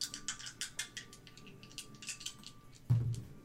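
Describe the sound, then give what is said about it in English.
Two fancy ten-sided dice are rolled, a quick flurry of small hard objects clattering and rattling across a surface, a dozen or so bright clicks over a few seconds, ending with a louder thud, with no talking. “Okay, so 2 d10s. We'll use the fancy dice.”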